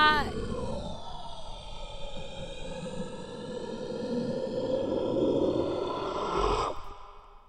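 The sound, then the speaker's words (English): A closet door lets out a long, drawn-out creaking groan that wavers slowly in pitch for several seconds, holding a steady, moderate loudness before stopping abruptly. “That was from the door again, eh? From the closet door.”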